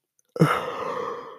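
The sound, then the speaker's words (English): A single long, breathy yawn starts abruptly after a brief silence and stretches on steadily, with no talking around it. “Sorry for the yawn.”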